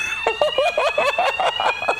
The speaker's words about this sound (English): The fire alarm's gone off in this hotel.